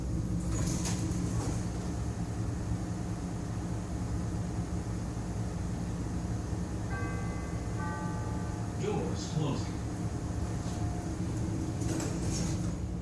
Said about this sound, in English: This is Harold Washington Library, State and Van Buren. Transfer to red, blue, and brown line trains at Harold Washington Library, State and Van Buren. This is an orange line train to Midway.